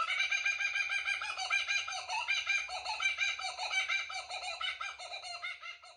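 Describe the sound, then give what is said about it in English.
Kookaburras laughing in a loud, unbroken chorus: overlapping cackling, chuckling calls that rise and fall in rapid rhythmic bursts for the whole stretch, with no voices. “In fact, I actually have a ringtone and have kookaburras as my my wake-up alarm.”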